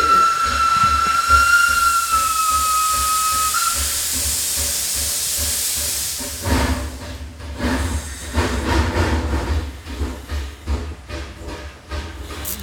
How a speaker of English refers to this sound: the train's leaving.